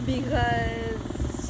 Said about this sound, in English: Because there's like helicopters and there's like...